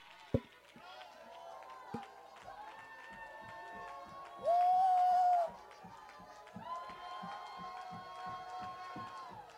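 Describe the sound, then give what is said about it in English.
A Pentecostal church audience shouting and dancing: steady, quick rhythmic thumps and claps under sustained organ-like chords, with crowd voices throughout and one loud, bright swell of sound partway through. “That's the apostolics waking up. That's the Pentecostals getting started.”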